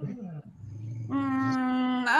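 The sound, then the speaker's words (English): A dog named Eddie barks, starting with a low rumbling growl and then a loud, drawn-out bark that stretches into a whining yowl, rising sharply in pitch at the end, because another pet, Cleo, is trying to steal his food. “No, that's Eddie barking because Cleo's trying to steal his food.”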